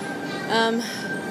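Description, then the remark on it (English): A suburban train at a station platform for the inner city, with a steady high hum and a brief, bright tonal squeal rising over the rumbling background for a moment before fading back. “Made it to the platform for the inner city, for the suburban train.”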